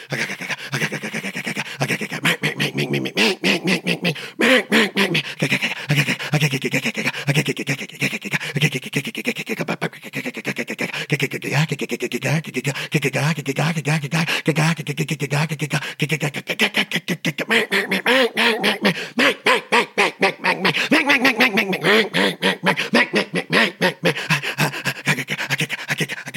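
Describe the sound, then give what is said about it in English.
A duck call imitates a group of ducks sitting on water at varied distances, with rapid, raspy quacking and chattering that runs nearly nonstop and loud, shifting in pitch and rhythm like many birds at once, the caller breathing in and out throughout without long breaks. “ducks don't do that, because remember, we're emulating a bunch of ducks sitting on that water.”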